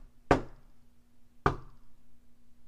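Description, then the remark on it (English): Three loud, hollow knocks on a door, evenly spaced about a second apart in a slow, steady rhythm, with a faint low hum underneath and no voices. “The knock was a steady, hollow thump.”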